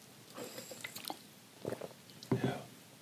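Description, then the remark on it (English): Quiet sipping and swallowing of water, a few soft wet slurps and gulps spread over a few seconds, with faint mouth clicks and no talking. “Let me sip this water, please.”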